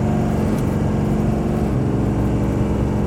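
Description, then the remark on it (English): A car engine roars steadily, a loud, dense low drone with layered tonal harmonics that shift slightly as the car accelerates hard up to 60 miles per hour in a timed run, with no voices. “get up to 60 miles an hour.”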